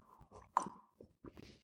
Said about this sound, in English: I think I'm going to have a sip of my coffee.